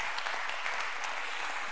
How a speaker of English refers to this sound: Somebody clap your hands to the Lord and let's give him praise right now.